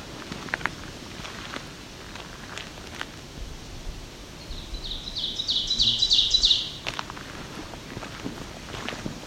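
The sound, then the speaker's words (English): An ovenbird, a warbler, sings its 'teacher, teacher, teacher' song on a roadside through a forested area, a run of high, repeated two-note phrases that grow steadily louder, heard over soft rustling and footsteps. “This call is often referred to as teacher, teacher, teacher. It gets louder and louder as it goes on.”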